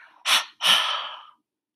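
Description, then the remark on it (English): Two forceful breaths pushed out through the mouth as the arms float down in a breathing exercise, a short sharp burst followed by a longer, trailing one, clear with no talking. “And as the arms float down, double exhalation through the mouth.”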